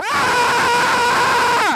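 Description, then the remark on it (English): A loud, sustained yell into a microphone, one long strained shout with a harsh, bright tone, rising at the start and trailing off sharply at the end, with no other talk. “Is this affecting the audio? If I yell at it.”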